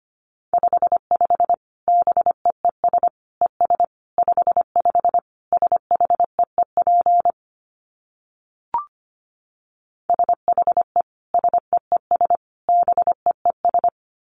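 Morse code sent at 25 words per minute in a single steady mid-pitched beep, keyed rapidly into short dits and longer dahs, sending two bursts of characters separated by a silent pause with one faint click.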